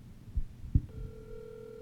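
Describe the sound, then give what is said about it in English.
A couple of soft low thumps as a phone is set down, then a steady electronic phone ringing tone of an outgoing call starts and holds unbroken, a thin speakerphone drone at moderate volume with no voices. “Call Chip Chantry.”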